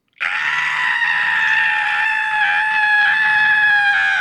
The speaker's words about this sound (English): That was a good scream. Thank you.